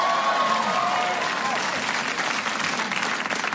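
A studio audience cheers and applauds steadily as the character Marcy enters the house through the back screen door for her first appearance on the show, a dense wash of clapping with whoops and shouts mixed in, loud and sustained throughout.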